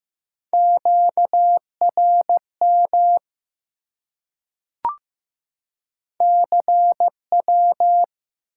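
Morse code at about 15 words per minute sending common amateur radio contact (QSO) elements: clear single-pitch beeps keyed in dots and dashes, sounding in two bursts separated by a short pause with a faint click, no voices.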